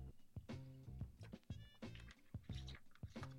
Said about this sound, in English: Seems like I got something caught in my throat. Let me take a quick swig of this alkaline water.